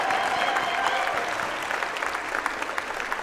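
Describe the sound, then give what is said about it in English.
A crowd applauds an honoree at an all-star musical tribute to the Reverend Dr. Marvin Chandler, a dense wash of many hands clapping at once with no single claps standing out, holding at an even, fairly loud level throughout. “Let us give our honoree a round of applause.”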